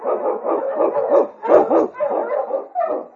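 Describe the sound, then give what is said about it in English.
King, a husky sled dog and Eskimo lead dog, barks and yips in a rapid, excited string of about eight loud barks with a slightly howling, whining edge, and no other sounds. “The Wonder Dog King, swiftest and strongest of Eskimo lead dogs, blazes the trail through storm and snow for Sergeant Preston as he meets the Challenge of the Yukon.”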